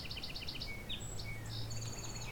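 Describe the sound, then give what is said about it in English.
A northern cardinal sings along a rail trail with fields on either side. It gives a quick run of repeated bright notes followed by longer whistled phrases, with other faint bird calls and a steady low outdoor hum. “Northern cardinal.”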